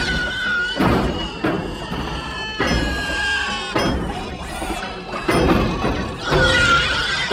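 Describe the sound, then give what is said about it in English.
The animated ED-209 robot tumbles down stairs with a series of loud, booming metallic thuds about a second apart, mixed with a shrill, pig-like squealing cry layered over the crashes. “It looked bad. The animation of him like falling down the stairs.”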